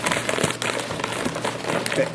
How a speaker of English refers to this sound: I'm rustling the In-N-Out Burger wrappers.